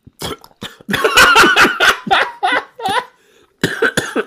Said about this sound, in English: He's coughing on a... Okay. He's coughing on a cough drop. Are you okay? Yep. He's good. He's good.